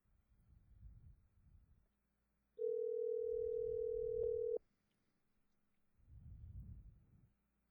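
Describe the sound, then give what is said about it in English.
A telephone line ringing tone on a call placed through Google Voice: one loud, steady electronic tone lasting about two seconds, between low muffled rumbling noises before and after, with no talking. “It's a lot of rings for supposedly just a message.”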